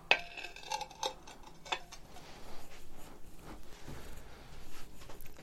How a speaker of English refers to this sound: I'll just move the plate so he can't knock it off the table.